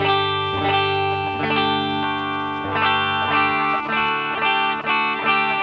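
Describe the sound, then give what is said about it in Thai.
A Telecaster electric guitar, its pickup set to a deep, thick tone, plays sustained, gritty chords with a buzzy edge from poor studio electrical power, struck roughly every second and ringing out with a chorus-like shimmer, fairly loud with no talking. “เสียงคือเสียงจี่ เสียงจี่เอ้ยตอนแรกผมเข้าใจว่าเทเลจะไม่จี่อย่างนี”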